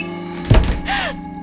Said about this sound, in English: Hello? Who slammed the door? Is someone in here?